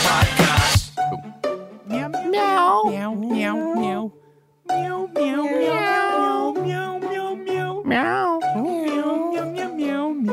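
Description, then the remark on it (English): Several voices mimic kitten meows in a continuous, overlapping stream of high, wavering mews, fairly loud, with a brief pause partway through. “Today on the Auntie Donna podcast, we're all little kittens, little kitty cats.”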